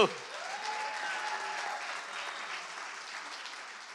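An audience claps steadily during a sermon, a dense, continuous patter of many hands at moderate volume that holds evenly for several seconds, with a faint vocal tone drifting over the start.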